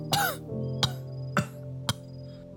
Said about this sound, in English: Crow coughed, a spray of blood.